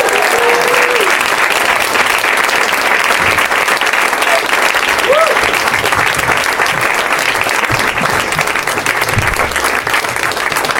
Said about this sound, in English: Todd, they're trying to clap long enough for you to get your ass in your seat.